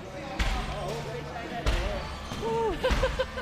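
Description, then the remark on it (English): Several sharp hand slaps land at irregular intervals, each a quick smacking impact, as martial arts class members walking in a circle at the end of the hour slap hands with each other, while voices chatter continuously in the background. “We finish the hour walking in a circle and hand-slapping every class member.”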